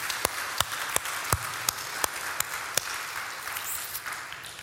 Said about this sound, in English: I appreciate the fact that some of you demonstrated a joy, a willingness to just clap all the way through that thing, because that's what we should do. We love celebrating baptisms around here.